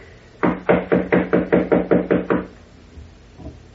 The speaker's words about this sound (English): Knock again, please, will you?